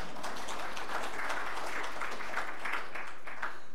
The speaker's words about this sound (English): I don't know what that was for, but I if it's applause, it must be good, I'm assuming.